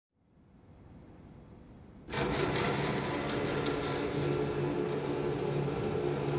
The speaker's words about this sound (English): These are the shutters going down on a service door of the Hotel Astoria.